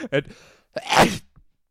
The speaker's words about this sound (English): That's going to smell like your sneeze for the rest of the time.